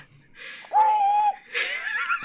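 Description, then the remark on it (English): A person lets out a loud, shrill, sustained shriek lasting about half a second, followed by a rough, breathy vocal squawk. The voice imitates a high-pitched animal-like cry. “I shall use the shriek. That is what might be used to attract customers.”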